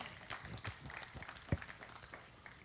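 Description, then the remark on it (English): An audience in church claps in a soft, scattered burst: many irregular, overlapping hand claps with one sharper, louder clap partway through, and no speech over them. “You're clapping for me in church.”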